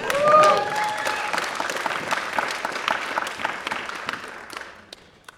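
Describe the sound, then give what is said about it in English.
During a sermon, an audience cheers and claps loudly on request, with dense overlapping applause and a few whistles or shouts at the start, the noise tapering off gradually over about five seconds. “I need a big cheer.”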